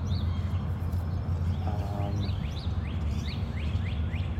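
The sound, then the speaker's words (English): Robins and starlings chirp and whistle in repeated rising calls on a spring morning in St. Louis, over steady low background noise, with a brief harsher honking burst from domestic snow geese in the background. “We hear robins. Yeah, and starlings, lots of starlings.”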